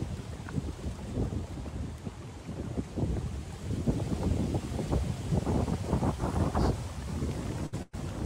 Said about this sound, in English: It's windy, but it's beautiful. It's actually a little cold for Florida. It's in the 50s right now.